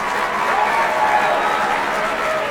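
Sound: audience applause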